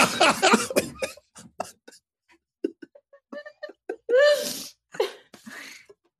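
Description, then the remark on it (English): A burst of harsh coughing from a person on a video call opens, then scattered smaller coughs and throat noises follow, with a strained, voiced hack near the end. No talking in between. “are you okay, …? I see you coughing pretty.”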